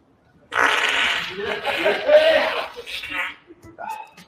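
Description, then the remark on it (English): A long, loud, sputtering fart from a man in a video being played back, carrying on for about three seconds with a rough, buzzy texture, trailing off into a shorter burst at the end. “Spoiler alert. He's going to fart.”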